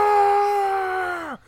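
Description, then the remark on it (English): A man imitates a Pokemon's cry from the anime: one loud, strained yell held steadily on a high pitch for over a second, then sliding sharply downward as it cuts off. “Because his Pokemon cry in the anime is just a man screaming. It's literally just a man going.”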